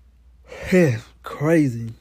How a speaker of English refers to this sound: Crazy. Sorry for that, yo. But I can't stop yawning because just got done doing a cleanup earlier today, and it was a lot.